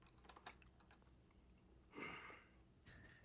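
A quiet sip from a cup of tea or coffee: a faint click, then two short airy slurping draws, with no one speaking.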